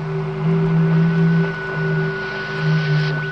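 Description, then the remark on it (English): Steady radio static hisses beneath a low electronic hum and thin sustained tones, with faint wavering signal pulses drifting through; no voices, just a continuous crackly transmission at moderate volume. The signal is picked up from the planet Venus. “There's no reason that Venus shouldn't radiate impulses. I don't mean the static.”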